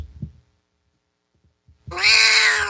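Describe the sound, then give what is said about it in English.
A loud cat meow bursts in near the end after a few soft low thumps and near-silence, holding a single drawn-out, bright cry with no voices present. “It's because cats are funny.”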